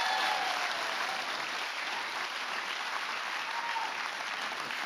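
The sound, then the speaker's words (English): Steady applause from a sizable church audience welcoming a former lead pastor, dense and continuous clapping at even loudness with faint whoops of cheering mixed in, no speech over it. “Now, for those of you who don't know him, you're about to find out why we're all applauding and why we love him so much.”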